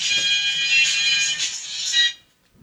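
A smartphone ringtone blares a bright, tinny musical tune loudly for about two seconds, then stops abruptly into silence.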